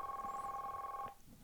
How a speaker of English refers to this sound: We got a phone call. Josh got an office phone call.